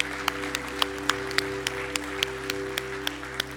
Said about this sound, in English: Hey, can we applaud for those who came into the kingdom this morning?